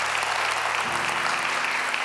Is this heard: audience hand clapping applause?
yes